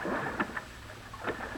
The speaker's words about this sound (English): We got into a boat and rowed to the exact spot.